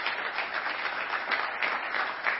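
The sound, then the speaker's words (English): Steady applause from an audience, a dense, continuous patter of many hands clapping at an even level throughout, with no voices standing out. “Now let's give another round of applause for Johnny.”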